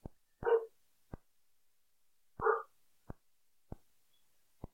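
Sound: dog barking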